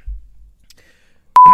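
A loud, steady electronic beep starts abruptly after a near-silent stretch and holds a single pitch to the end, preceded by a faint low rumble.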